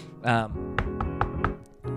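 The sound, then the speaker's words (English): Four evenly spaced, crisp knocks on a door rap out in a quick steady rhythm, with brief bursts of a person's voice just before and right after. “I'm going to get that door.”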